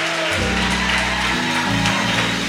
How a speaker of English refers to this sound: Clap your hands. Give him a praise.